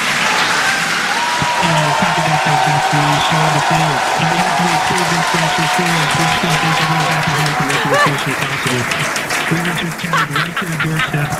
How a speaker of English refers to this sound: Because they had the crowd and everything and all the cheering?